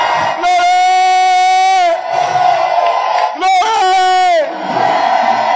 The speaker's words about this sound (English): While Jesus was preaching, he just shouted. So there's nothing wrong with shouting in the house of God. It's not bad at all. It's a very good thing. Give the Lord a shout!